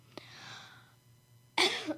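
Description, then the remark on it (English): A short, sharp cough-like burst from one person, loud and breathy, preceded by a faint click and a fading hiss; no speech alongside it. “Sorry, I had to get that out. Excuse you? I thought I was going to sneeze, but it wasn't a sneeze.”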